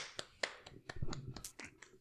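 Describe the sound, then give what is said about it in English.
One sharp hand clap, a lone clap given for Honda, stands out among several softer clicks and taps, with a faint murmuring voice in the middle. Everything is quiet and brief. “The one clap.”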